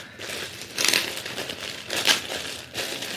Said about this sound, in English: The rustle of paper, letter paper.